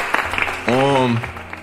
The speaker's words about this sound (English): Clap it up for that real quick.